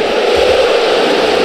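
A sports stadium crowd sound effect: a loud, unbroken roar of a huge stadium crowd, thousands of voices blurred into a dense, steady wash of noise with no single voice or cheer standing out.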